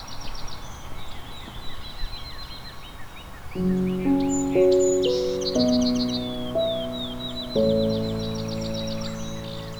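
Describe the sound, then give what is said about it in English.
A chorus of bird songs on a warm, sunny spring morning: high chirps and quick trills overlap throughout, joined midway by louder, lower stepped calls that rise and fall in steady phrases. “A warm, sunny morning in spring can inspire a diverse chorus of bird songs.”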